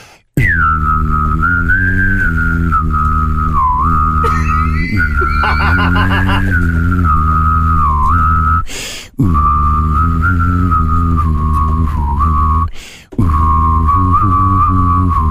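A steady hum-whistled tune plays loud, buzzing with a low hummed drone, pausing twice for quick breaths, while faint, indistinct thumping sits underneath from a man drumming with his belly on a desk.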